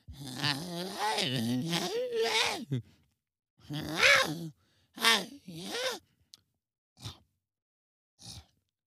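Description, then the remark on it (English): Someone vocally imitates a girl licking a person's neck: a long, wavering groan-like stretch of wet mouth noises, then a few shorter slurpy bursts separated by pauses, moderately loud. “She didn't say a word to you and then just started licking your neck.”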